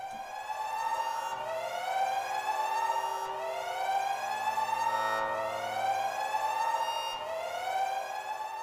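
A loud alarm siren wails on its own, its pitch sweeping upward in repeated cycles roughly every two seconds, steady with no voices.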